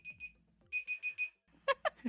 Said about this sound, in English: 8 seconds. It was actually, I had a dream and you were there and we were talking about food and, there goes the timer. And that's it.